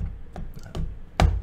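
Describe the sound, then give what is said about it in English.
A few sparse taps on the keyboard of an HP Omen 17 gaming laptop with 26 anti-ghosting keys and a metal C deck, three distinct clicks spaced out, the last one noticeably louder, over a low steady background hum. “It's got 26 anti-ghosting keys. The metal C deck. See?”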